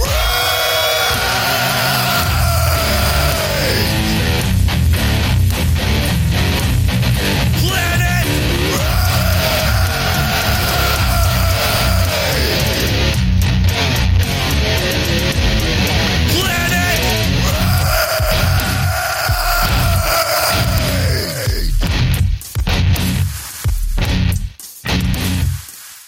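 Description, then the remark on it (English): Loud, heavily distorted music with harsh screamed vocals over a dense, driving wall of guitars and pounding drums, staying intense throughout before breaking into choppy bursts near the end. “for that music, that screaming.”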